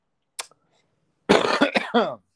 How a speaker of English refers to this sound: Hello. Sorry. Did not mean to cough right there.